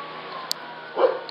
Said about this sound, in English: Dogs are barking.